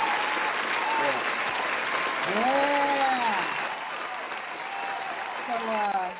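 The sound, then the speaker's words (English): An audience applauds steadily throughout, a dense wash of clapping with a few voices whooping and cheering in rising and falling tones over it. “Well, let's give everyone an applause that they will keep on supporting you.”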